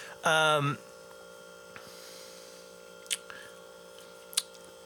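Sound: refrigerator compressor humming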